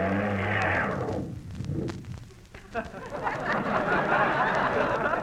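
The engine of a yellow car cranks and sputters into a low, rough rumble, briefly dipping before settling into a steady, noisy running drone.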